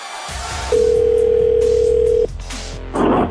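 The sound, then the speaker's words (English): A steady, loud telephone dial tone hums for about a second and a half as the radio morning show Up and Adam in the Morning goes to the phone lines to call a guest, then cuts off, leaving quiet line noise and a brief burst of static near the end. “All right, we're ready to go to the phone lines.”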